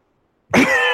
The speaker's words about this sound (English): Sorry. We're both coughing at the same time. Yeah, as I said, I'm not doing too hot.